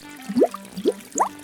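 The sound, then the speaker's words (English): Hot tub water sloshing and bubbling, heard as three short, rising bloops roughly half a second apart, moderately loud, with no voices. “Also, you see the bubbles that are floating up out of the hot tub and into the air?”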